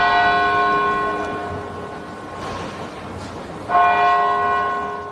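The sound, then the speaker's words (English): Memorial bells at the Boston Marathon finish line ring out in slow, loud tolls marking 10 years since the 2013 bombing, each strike humming with a long, resonant decay. A second toll arrives after a pause over a soft hush of outdoor ambience, with no talking. “On Saturday, thousands of people gathered at the finish line as bells marked 10 years since the deadly bombing attack at the event.”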